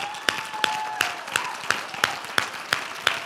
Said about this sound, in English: I want to do this tonight, and I don't like to differentiate between the body here, but I want to publicly applaud every African-American member of this church right now.